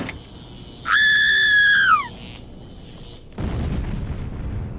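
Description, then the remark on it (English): A high whistling tone slides downward, then a sudden deep, rumbling blast like an explosion or thunderclap hits and keeps roaring low and loud until the end: an explosion from the Lightning Woods after a tower discharges stored magical energy, heard for miles and as far as Colorado Springs as supernatural thunder. “The explosion from the Lightning Woods scared everyone for miles.”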